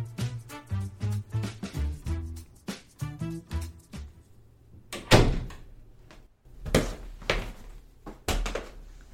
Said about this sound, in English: Well, if you don't want me barging in here, then you should start locking your door.